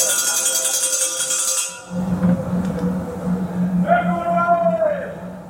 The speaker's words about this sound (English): Imagine the inside of a prison. Iron bars, steel doors, concrete walls, and unrelenting noise.